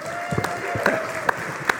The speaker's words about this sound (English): You're applauding for my wife, is what you're doing.